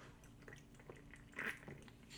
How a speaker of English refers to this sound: Sorry, guys, just had to take a sip of my crisp, refreshing peach and honey aha. Never thought peach and honey would go together, but I guess with a little bit of carbonated water, anything is possible.